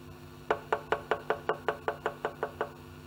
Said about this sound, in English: When you knock the door and they come and open you, it is called favor.